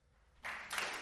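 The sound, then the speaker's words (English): A short burst of hand clapping rises out of near silence, quickly thickening into a dense, steady wash of applause that continues to the end. No one speaks over it. “Clap it up for this man.”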